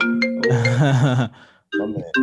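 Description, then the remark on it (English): A phone rings with a loud, melodic ringtone: a run of bright tonal notes with a warbling middle passage, a short pause, then the tune starting again. No one speaks. “Oh, he got a phone call coming in.”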